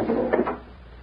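A door to a private chamber is opened from a little anteroom with a short wooden scrape and clunk that quickly fades into quiet. No one speaks.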